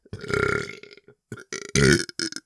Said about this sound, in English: I thought I had a burp. Hold on.